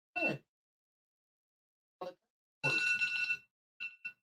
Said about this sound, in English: The alarm's still going off. Wait, the alarm's going off on your phone?